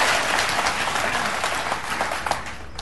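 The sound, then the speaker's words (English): An audience breaks into steady applause, a dense wash of many hands clapping at once, fairly loud and sustained throughout with no one speaking over it. “Ooh, you got an applause break”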